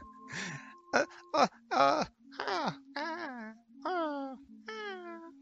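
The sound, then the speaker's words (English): A person vocally imitates a baby creature calming down: a string of soft, wavering whimpers and squeaky, mewing coos, rising and falling in pitch, fairly quiet, with no words spoken. “I want to hear the noises that the baby made as it calmed down a bit more.”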